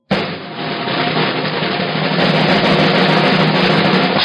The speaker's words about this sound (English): Thank you for that drum roll.